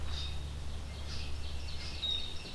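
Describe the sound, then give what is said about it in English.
Several short, high chirping calls of red-winged blackbirds, apparently including some juveniles, repeat irregularly, fairly faint over a steady low rumble of background noise. “Lots of red-winged blackbirds, including some juveniles, it sounds like.”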